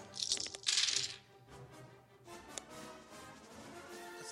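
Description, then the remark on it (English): A short clatter of dice, four setback dice and two purple dice, rolling across a table, a quick burst of rattling clicks lasting about a second, then fading into quiet room noise. “A lot of setback dice.”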